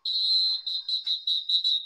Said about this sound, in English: That's the wrong one. Hey, there it is. That's the one. This app has literally changed the order of the whistles.